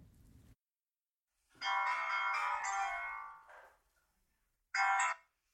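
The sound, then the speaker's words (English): A telephone rings on an outgoing call: one long, buzzy ring followed by a pause and the start of a second, heard clearly with no one speaking. “But since Melissa knew her, they picked up the phone.”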